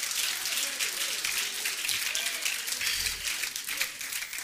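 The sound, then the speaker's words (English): A crowd claps their hands to the Lord during a sermon, steadily in a dense, continuous wash of many hands, with faint voices murmuring underneath throughout. “Let's clap our hands to the Lord, shall we?”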